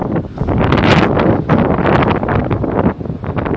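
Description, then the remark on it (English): Strong wind buffets the microphone in a loud, continuous roar with gusty swells and rumbling low-end thumps, filling the whole stretch without any clear speech. “Fuck, it's really windy.”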